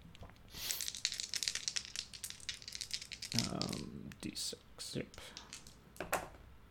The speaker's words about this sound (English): Oh, God, my dice keep rolling. It was on 15 and then rolled the 7.